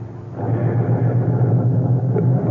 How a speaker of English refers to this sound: I got out of the car. I stood on the sidewalk and watched him drive away.